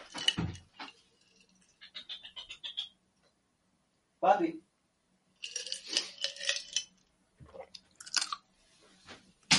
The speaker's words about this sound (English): I was chomping ice on Mike.